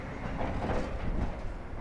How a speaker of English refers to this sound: Those sounds are trucks hauling material from the Moab Uranium Mill Tailings Remedial Action Project. The U.S. Department of Energy is cleaning up around 16 million tons of uranium tailings here on the banks of the Colorado River